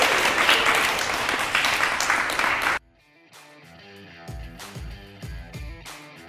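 A burst of loud, dense applause from a crowd lasts a few seconds, then stops abruptly and gives way to quieter music with a steady beat and bass notes.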